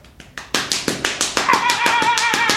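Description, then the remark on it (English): A spanking machine delivers a rapid, steady series of about a dozen sharp slaps, and a high-pitched whining tone joins in partway through and continues under the smacks. “Give that a slap now.”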